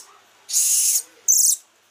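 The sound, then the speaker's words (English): A golden lion tamarin, a type of monkey, gives two shrill, high-pitched whistling calls, a longer one followed by a shorter one after a brief pause, loud with no talking. “It's a golden lion tamarin.”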